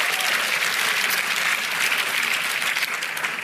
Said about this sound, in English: Somebody give the Lord a hand clap, a shout, a hallelujah, and an amen.